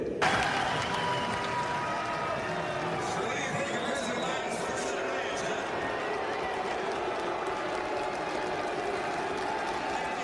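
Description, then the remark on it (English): A large crowd of delegates at the Utah Republican Party state convention loudly boos Senator Mitt Romney: a steady roar of many voices that holds for about ten seconds, with scattered shouts and clapping mixed into the din. “Here at the Utah Republican Party state convention, Senator Mitt Romney was loudly booed by delegates.”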